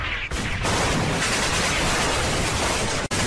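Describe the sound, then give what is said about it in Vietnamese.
A dense, loud barrage of mixed gunfire from many kinds of guns, fired from both sides of a road at soldiers on trucks that have just stopped on a highway, shots overlapping into a continuous roar with a brief break near the start and a sudden cutoff near the end. “Rồi thì tiếng súng đủ loại rộ lên.”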